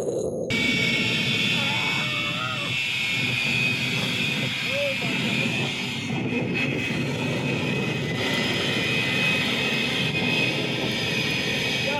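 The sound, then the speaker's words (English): A jet engine strapped to a giant truck roars loudly and continuously as it shoots out a continuous fireball, a dense rushing blast with a piercing high whine running through it for the whole stretch, with indistinct voices faintly underneath. “This was a fireball out of a jet strapped to giant a truck.”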